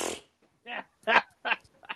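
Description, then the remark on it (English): A person imitates a fart with their mouth, a short series of four or five buzzy, sputtering bursts, loud, with no other talking. “Can you do that fart noise again?”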